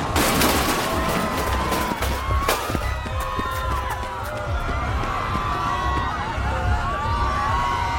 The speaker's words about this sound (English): A gun. He looks right at me and raises it. Before I can react, I hear a gunshot.